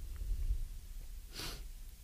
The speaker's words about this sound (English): Sorry, but you guys feel my heavy breathing.